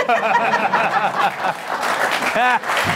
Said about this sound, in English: They're applauding me.